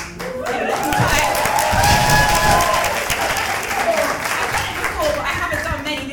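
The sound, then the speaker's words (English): An audience applauds steadily for about six seconds, a dense wash of many hands clapping at an even, fairly loud level, with a murmur of voices mixed in, welcoming the host at the opening of a panel on police violence against kids. “But thank you for the applause.”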